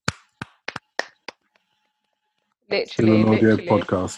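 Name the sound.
quiet hand clapping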